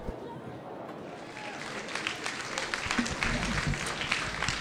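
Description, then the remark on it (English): Live audience applause at a talk recorded at the Ice House in Minneapolis on November 18th, 2019: many hands clapping in a dense, continuous patter that swells gradually louder over several seconds, with no single voice standing out. “I just want to give them another round of applause.”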